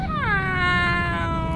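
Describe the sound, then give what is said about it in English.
A cat named Felix, riding in a car being driven down the road, lets out a long, loud wailing cry, its pitch dipping at the start and then holding steady in a drawn-out, complaining yowl, with a low rumble underneath. “He cried from the bottom of his tummy.”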